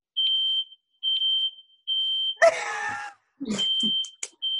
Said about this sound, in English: Our fire alarm goes off even when there's not even smoke in the house. It goes off all the time. We're not burning stuff.